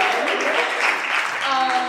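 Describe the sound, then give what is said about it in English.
An audience claps for Starbucks in a dense, steady burst of applause lasting about two seconds, with a few voices calling out as it continues. “And someone clap for Starbucks, come on, all of you go there.”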